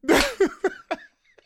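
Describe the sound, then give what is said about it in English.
A loud, breathy sneeze bursts out, followed by three shorter voiced catches of breath that fade quickly into quiet. No one speaks. “God bless you.”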